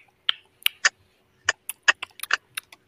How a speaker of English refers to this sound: So if I was to ask, let's do something super simple, like the simplest, is what I want you guys to do is just click your tongue for me. Make a clicking sound with your tongue.